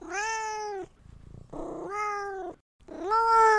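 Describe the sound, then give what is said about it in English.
A cat meows three times from inside a bag, in long, drawn-out, complaining cries, fairly loud, with short pauses between them and no one talking. “Once you put your cat into the bag, however, the kobold is going to take the bag and you can kind of hear...”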